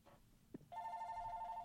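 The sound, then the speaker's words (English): A phone rings with an incoming call from a politician, a steady, bright electronic tone that starts abruptly after a soft knock and continues without pause, fairly loud with no talking over it. “make sure that you check out Jack's episode with me earlier as my phone rings”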